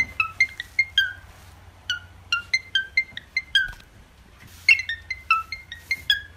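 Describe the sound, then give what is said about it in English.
A cockatiel whistles an imitation of a phone ringtone: bright, high notes in quick repeating bursts of short, falling chirps, with a steady low hum underneath and no talking. “And this cockatiel is very good at mimicking a certain ringtone. Check this out.”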